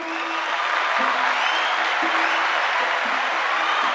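A crowd claps in a dense, steady round of applause that stays loud and even throughout, with a faint low tonal hum underneath and no talking.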